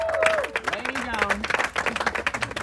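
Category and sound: crowd, audience clapping hands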